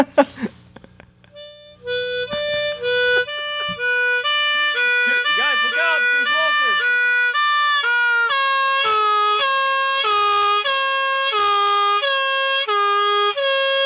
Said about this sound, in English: Uh-oh, I hear a European ambulance coming down the road.